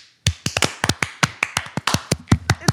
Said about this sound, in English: Okay, everybody clap to get the timing right.